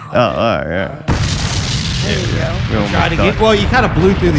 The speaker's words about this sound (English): I mean, Deadly Friday, an explosion, a chocolate factory blew up.